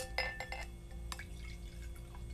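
A drink is poured into a glass, with a few quick bright splashes and clinks followed by a softer trickle against a low background hum.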